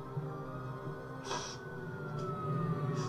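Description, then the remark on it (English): An ambulance siren holds a long, steady wail that slowly slides in pitch, clear, with a few brief hissing bursts over a low rumble and no one speaking, as an ambulance arrives after a car ran off the road. “By the time the ambulance came, he was already dead.”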